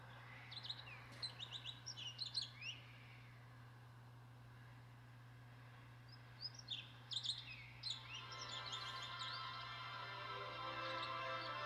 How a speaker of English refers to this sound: Or it starts out with actual bird noises. Yeah. Which slowly go into flutes. Let's play it for you, and you'll see.